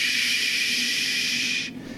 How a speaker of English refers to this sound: They go down, and as you're getting closer, you're hearing this familiar sound of water.